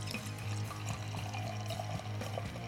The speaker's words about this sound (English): Yeah, go for the pour now. See if we can get that on mic again.